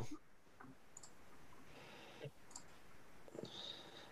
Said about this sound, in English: Jeremy is typing.